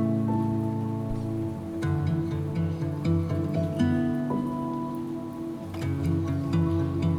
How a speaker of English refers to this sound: Soon I'm dancing in the rain, arms outstretched, head raised high, legs moving in rhythm.